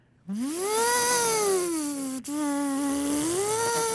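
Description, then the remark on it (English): A person's voice mimics a dentist's drill in a sound-imitation game, with a steady, high whine that rises, wavers, briefly cuts out, then resumes and climbs again near the end. It's fairly loud, with no other talking. “Sound number two is a dentist's drill.”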